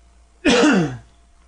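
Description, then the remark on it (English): A single abrupt cough with a rough, throaty burst, lasting about half a second before fading into quiet room tone. No talking. “I just coughed.”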